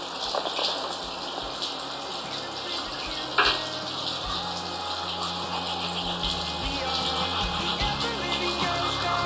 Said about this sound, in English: The distinctive sound of toothbrushing.